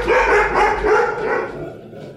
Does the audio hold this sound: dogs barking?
yes